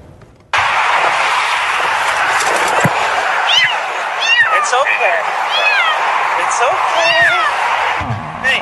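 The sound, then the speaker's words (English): A frightened kitten stuck in the center median of a busy highway meows repeatedly in short, strained cries, several in a row, nearly buried beneath a loud, constant roar of passing highway traffic. “came to the rescue of this cat stuck in the center median of a busy highway.”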